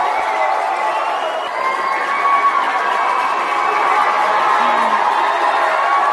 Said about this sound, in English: That's all we can do is a massive round of applause.